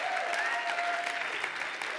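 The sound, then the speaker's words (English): A standing audience gives the Lord a round of applause, dense overlapping clapping at a fairly loud, even level, with a faint sustained tone and murmurs woven underneath. “Would you give the Lord a round of applause?”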